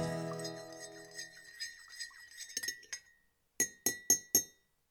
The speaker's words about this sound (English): Big Merv and I caught up at one of his favourite haunts, the bustling Andy's Cafe there in Essendon.